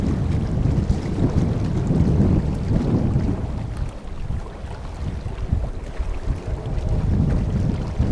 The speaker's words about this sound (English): But just listen to that, the sound of the fresh water waves and the cold wind together.